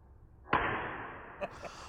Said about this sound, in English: Whoosh. Oh, that was slow motion reverberation.